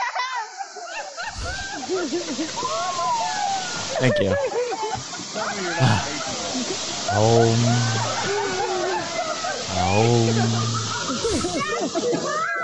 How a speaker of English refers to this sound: Yes, I need that on a loop just in the background here of the monkey peeing in his own mouth because that's the only thing that gets me out of this.